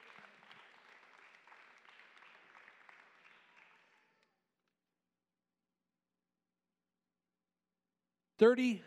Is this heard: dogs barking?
no